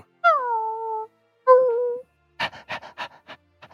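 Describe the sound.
A person imitates a dog named Riley in a Pathfinder tabletop role-playing game, as the dog is woken: two drawn-out, falling whiny yelps, then a quick run of about eight breathy panting puffs. No other talk is heard.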